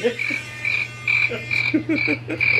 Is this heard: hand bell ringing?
no